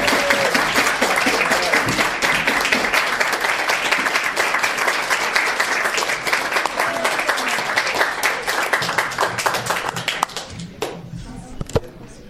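Sustained audience applause from a sizable crowd clapping a performer up to the stage to read a poem, dense and steady for about ten seconds before thinning out to a few scattered claps at the end.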